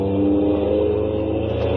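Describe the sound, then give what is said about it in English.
A heavy convoy truck engine roars loudly and steadily as it passes, its deep rumbling drone holding throughout with no speech. “It's the Red Ball Express, roaring by, roaring by.”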